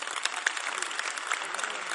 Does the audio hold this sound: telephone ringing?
no